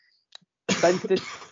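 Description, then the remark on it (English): A small cough in two quick bursts, preceded by a couple of faint clicks, with no talking around it. “had a little cough and I couldn't find mute.”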